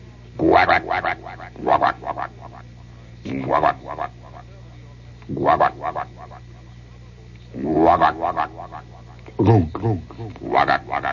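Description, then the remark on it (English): A man's voice mimics a frog, letting out repeated low, throaty croaks in bursts with pauses between them, each one trailed by a noticeable echo from an echo chamber. “I can do a great frog. Give me a little echo chamber, will you, Bill?”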